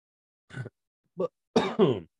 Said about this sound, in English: Missed the cough button again. There you go, ladies and gents. A little remix. Cough remix.